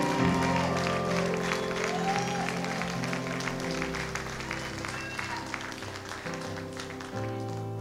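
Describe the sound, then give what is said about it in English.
A crowd of people claps steadily and continuously throughout during an altar call as people come forward to the altar, the dense patter of many hands layered over sustained music with low, held tones. “Don't quit clapping till they get.”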